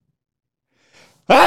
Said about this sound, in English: I got a sneeze.